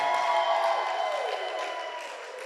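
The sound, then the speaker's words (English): A church audience claps and shouts together, answering a call to clap their hands and give God a shout: a dense, loud wash of applause mixed with cheering voices that holds steady and eases off slightly toward the end. “In the name of Jesus, clap your hands and give God a shout in this house.”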